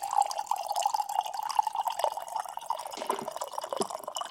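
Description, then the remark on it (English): Water pours from a jar in a steady stream for a few seconds, a continuous splashing gurgle with a faint ringing tone and no voices. “Listen to that pour.”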